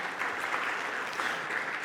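A crowd claps steadily in a dense, continuous round of applause, many hands blending into a bright, even wash of sound with no voices standing out.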